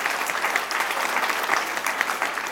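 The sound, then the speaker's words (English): Steady audience applause, a dense crackle of many hands clapping at once, sustained and fairly loud throughout, with no voices standing out, given for the event's sponsors: the Bill and Melinda Gates Foundation, the Killinger Foundation and the Seattle Foundation. “Give them a round of applause for being our sponsors.”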